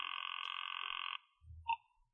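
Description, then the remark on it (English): A telephone rings once, a steady warbling trill lasting about a second, followed by a soft low thump and a brief click, with no one speaking. “Let it ring.”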